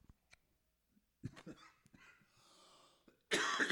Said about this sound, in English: Excuse me, I'm struggling with the hack and cough here. We're powering through. We're podcasting while injured.